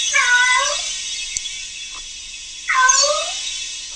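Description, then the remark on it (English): A cat meows twice, long drawn-out and mournful, each cry rising and falling in pitch, separated by a short pause, fairly loud with no talking. “Depressing meow.”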